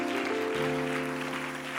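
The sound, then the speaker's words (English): A crowd at a worship service claps their hands to the Lord in a steady, dense wash of noise while sustained organ-like chords hold underneath, with a brief shift in the notes partway through. “Why don't everybody clap your hands to the Lord together?”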